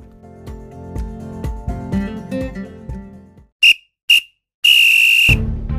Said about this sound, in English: Well, there goes the final whistle, and that brings this week's podcast to an end.